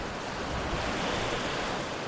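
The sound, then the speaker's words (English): Ocean surf breaking on a beach on the Nantucket shore of the North Atlantic, a steady, broad rushing roar of waves curling over and crashing down that stays fairly loud throughout, with no voices. “Standing on the beach, facing the open ocean on the Nantucket shore, I could feel this energy as a wave curled over and crashed down.”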